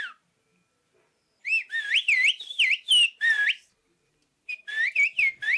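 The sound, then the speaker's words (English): Villagers in a Greek town hold a whistled-language conversation: a long run of sharp, gliding, pitch-bending whistles, a pause, then a shorter reply. Loud and clear, with no talking. “Villagers in this Greek town can whistle an entire conversation.”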